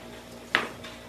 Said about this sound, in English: May I see the card while you're taking away your rolling dice? Yeah. Do I have to roll this? Can I roll this after I've rolled? After you roll the dice, but before you know the outcome.